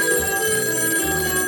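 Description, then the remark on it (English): A telephone rings steadily and loudly, its bright electronic trill filling the short stretch with no voices, the ring tone pulsing in two quick bursts. “Now, let's go back in time to that phone call to the Oihel.”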